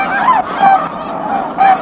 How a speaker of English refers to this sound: Every winter, up to 100,000 tundra swan, Canada geese, snow geese, and ducks spend the winter at the Pocosin National Wildlife Refuge and nearby Pungo Lake.